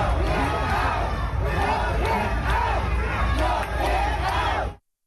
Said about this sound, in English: And they were booing.